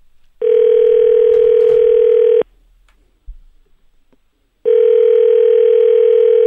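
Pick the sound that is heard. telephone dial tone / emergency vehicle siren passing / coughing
telephone dial tone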